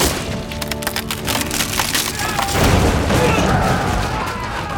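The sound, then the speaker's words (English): Wood creaks and splinters in a flurry of sharp cracks, then a heavy wooden bunk bed, its two front legs slashed by Zorro, collapses onto three soldiers with a loud, rumbling crash that lingers as debris settles. “Zorro slashed the two front legs, sending it crashing down on top of them.”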